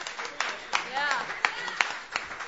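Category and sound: crowd, audience round of applause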